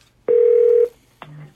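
A loud, steady telephone tone holds for about half a second, then after a short pause a lower, buzzier tone starts, as a phone call is placed for an interview about a new memoir. No one speaks.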